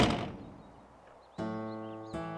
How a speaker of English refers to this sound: Then he slammed the door in David's face.